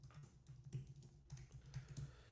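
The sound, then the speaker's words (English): Rapid, uneven clicking of keys on a computer keyboard as someone types a search for Sabonis trade rumors, fairly quiet, with a low steady hum underneath and no voices. “Are you typing in Sabonis trade rumors?”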